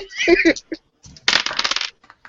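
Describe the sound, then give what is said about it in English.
Dice clatter and rattle across a hard tabletop in a quick burst of sharp clicks, fairly loud, after a brief murmur of a voice; the dice are rolled for a knowledge roll in a game. “So, would you please make me a knowledge roll? Oh, God, please, dice, fail me.”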